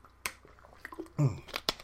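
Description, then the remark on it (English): A quick sip of water: a few small wet clicks of the lips, then a short low gulp in the middle and a final sharp mouth click, all fairly quiet with no talking. “sorry, let me get some water real quick and then I'll read it.”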